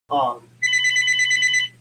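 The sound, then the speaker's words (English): A telephone rings once in a fast, trilling electronic burst lasting about a second, loud, right after a short snippet of a voice, over a steady low hum. “Man, it seems like every time we do a podcast, that phone gets us.”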